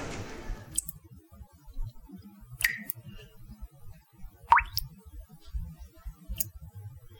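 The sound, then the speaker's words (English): A kitchen sink faucet drips slowly: three or four clear, bright plops spaced a couple of seconds apart, over a faint low rumble, with no talking. “A hollow silence dominated the room with such an emptiness that Walter imagined, if it weren't for the dripping of the kitchen sink faucet, he might be able to hear the tapping feet of the ants that made themselves busy along the hardwood floors.”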